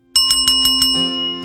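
A bright bell rings rapidly, about five quick strikes in a burst, then its metallic tone lingers and fades. It sounds fairly loud, with no voices.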